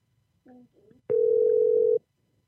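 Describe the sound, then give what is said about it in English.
A couple of short, soft tonal blips lead into a loud, steady telephone dial tone that holds one even hum for about a second and then cuts off abruptly, as a phone call is placed to a record store, Amoeba Music. “I'm calling a record store.”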